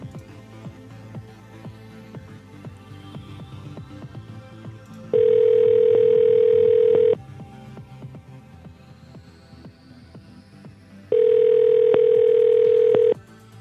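A phone call to a man rings out with a ringback tone while waiting for him to pick up: two long steady buzzing tones, each about two seconds, separated by a few seconds of quiet, over a faint low background hum.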